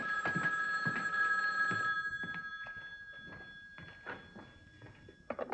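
telephone bell ringing

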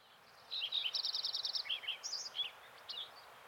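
lincoln's sparrow singing

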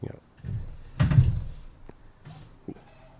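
door being opened

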